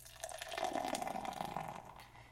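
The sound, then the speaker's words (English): Beer from a tall boy can, hopped with Mount Hood, Centennial, Chinook and Simcoe, glugs steadily into a glass, a continuous pour with a rising fizzy splash that lasts about two seconds and then tapers off. “And the pour.”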